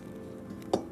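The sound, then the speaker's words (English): Freshly boiled hot water pours steadily into a cup of Nescafé, a continuous gurgling stream interrupted by a brief, sharper clink or splash near the end. No one speaks. “That first cup of coffee, when the water boils, you pour it into your delicious cup of Nescafé.”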